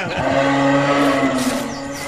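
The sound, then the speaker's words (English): A buck deer calls with a single low, drawn-out bellow, a steady droning tone held for about two seconds at fairly strong volume, with no voices over it. “That's not Mario. That's a deer. Sounds like a buck.”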